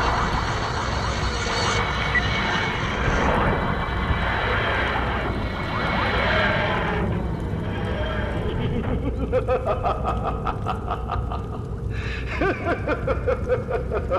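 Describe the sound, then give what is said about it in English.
A loud TARDIS dematerialising effect from the Master's new TARDIS, a wheezing, grinding roar that swells and fades in repeating cycles, with wavering tones and a rapid pulsing flutter toward the end. “No, not whistling. It's more like dematerializing.”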